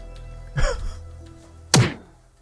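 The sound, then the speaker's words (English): Two Foley slap sound effects in a film scene, a woman slapping a man, about a second apart, the first a duller thump with a short tail, the second a sharper, louder smack. No voices, just a low background hum between them. “Oh, did you hear that sound effect?”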